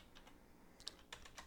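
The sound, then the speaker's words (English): Quick, irregular clicks of fingers tapping on a computer keyboard, fairly quiet, with a few sharper keystrokes standing out; no voices. “In the middle of typing something.”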